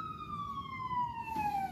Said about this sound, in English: We got an ambulance.